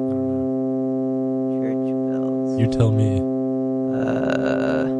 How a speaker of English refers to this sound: I hear church bells.